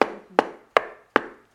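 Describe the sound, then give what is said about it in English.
Five sharp knocks on wood, evenly spaced at a steady, unhurried pace, each with a short resonant ring that fades before the next. Fairly loud, with no talking. “And I'm going to confess to you, it is discouraging to day after day or week after week to try to talk to people, give them tracts, try to look for that door, and it's like all you're doing is this on their heart.”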